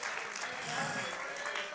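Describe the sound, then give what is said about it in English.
An audience claps continuously in praise of God, a dense, steady patter of many hands at fairly even loudness, with voices calling out and murmuring underneath. “Somebody ought to take 30 seconds, clap your hands, lift your voice, begin to praise an almighty God.”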